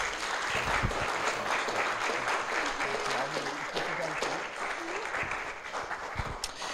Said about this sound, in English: Amen. We can now clap, definitely.